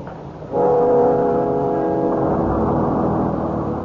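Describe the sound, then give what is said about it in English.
The heavy engine of a crowded bus kicks in abruptly and drones loudly with a deep, steady hum as it pulls away, holding strong for several seconds with no voices. “The bus was crowded, and we had to stand.”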